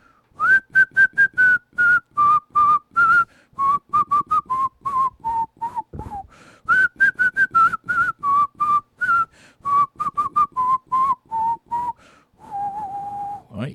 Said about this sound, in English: Even my whistling is off because of the allergies.